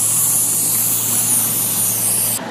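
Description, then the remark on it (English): Construction workers drill a hole in a busy street on a Saturday: machinery roars in a loud, steady, hissing rush over a low, constant mechanical drone. The noise runs unbroken and eases slightly just before the end, with no voices. “It was just some construction guys. They were drilling a hole in a busy street on a Saturday.”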